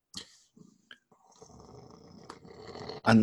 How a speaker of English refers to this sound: And that might, I can hear the cat purring. She's drawn blood now.